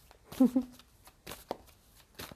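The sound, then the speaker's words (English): A deck of oracle cards being shuffled, with several quick papery riffles and soft slaps in bursts, and a brief murmured voice near the start. “I'm actually shuffling quite well today.”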